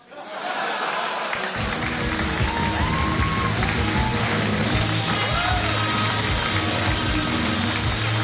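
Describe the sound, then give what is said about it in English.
A crowd breaks into loud, sustained applause after the act of Nivalis Garosis, kept going for the next act, Lewis Coleman; it rises quickly and holds steady for several seconds, with scattered cheers and shouts mixed into the clapping. “Keep that applause going for the next act!”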